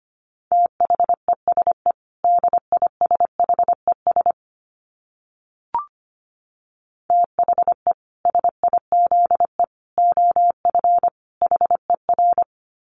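A single steady, mid-pitched tone keyed on and off in quick dots and dashes, sending Morse code at 25 words per minute, with a pause and a faint click midway before the code resumes.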